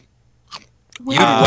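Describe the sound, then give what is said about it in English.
Two quick, crisp crunches of someone munching popcorn, followed right away by a loud voice that talks over the end. “I heard somebody munch popcorn.”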